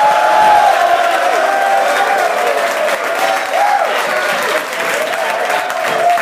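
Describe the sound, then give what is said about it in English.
A large studio audience at the Sigma Phi Epsilon Edge National Conference, during a live radio broadcast, claps loudly and steadily for about six seconds, with whoops and shouted cheers rising over the dense, continuous applause. “we are broadcasting live today in front of a studio audience at the Sigma Phi Epsilon Edge National Conference. Let's hear it, gentlemen.”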